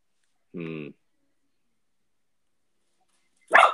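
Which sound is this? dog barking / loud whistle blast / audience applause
dog barking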